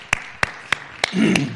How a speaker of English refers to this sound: God bless you, kids. In our church, we always clap when they leave, so yeah.